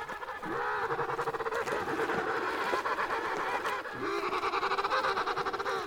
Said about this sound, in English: These emperor penguins, made famous by the movie March of the Penguins, are the largest of all of these tuxedo-clad birds. They spend their lives on the Antarctic ice and search for food in the ocean waters.